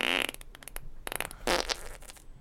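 A cartoonish fart sound effect played from a soundboard button sounds alone, with a long buzzy blast followed by a string of sputtering bursts and a final raspy puff, loud.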